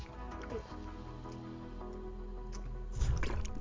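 Someone takes a quiet sip of water, with soft wet slurping and a fuller swallow near the end over a low steady background hum.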